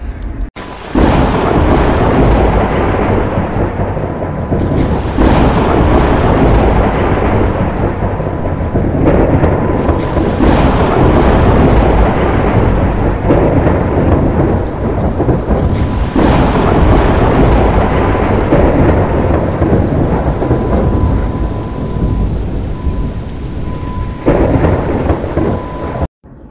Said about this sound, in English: Goodness, y'all hear that thunderstorm?